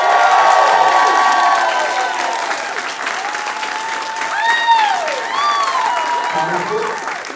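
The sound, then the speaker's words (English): A large crowd of about 10,000 people in Oakland applauds steadily while cheers and whoops rise over the clapping, a loud, dense wash that swells midway and keeps going for several seconds. “And we have an audience here in Oakland. Everyone, give it up real big.”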